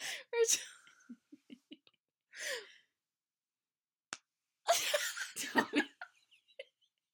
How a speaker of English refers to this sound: just longingly slapped my arm. And I don't know how to feel about that.